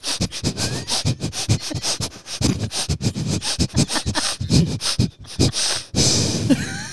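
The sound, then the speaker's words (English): A person imitates a dog sniffing, producing rapid, rhythmic nasal snuffles in quick bursts, ending with a longer breathy exhale. “It's like they have to sniff, sniff, and then release.”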